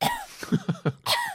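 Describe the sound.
A voice imitates the coughing of an audience member at an Australian ballet production at the Arts Centre: a burst of short, raspy throaty coughs in quick succession, fairly loud, ending with one stronger hack, with no talking.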